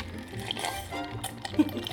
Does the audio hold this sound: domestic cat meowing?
no